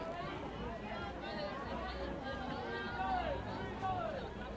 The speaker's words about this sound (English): That's a little awkward eating it because we're standing in the middle of a crowd, trying not to get bumped and stab myself with the plastic fork.